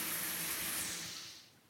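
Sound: running shower water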